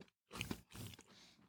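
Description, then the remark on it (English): Crisp crunching of a crunchy-edged cookie being chewed, with a few loud bites in quick succession after a brief silence, then softer mouth sounds trailing off. No talking. “Definitely the edge is crunchier, which I love, and it is definitely cooked in the center.”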